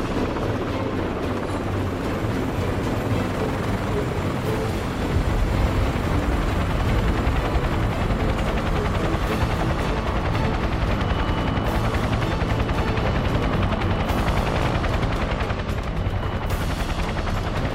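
A helicopter sets down lightly in the center of a helipad, its rotor and engine making a loud, dense, continuous roar that swells slightly after a few seconds and stays steady, with no voices.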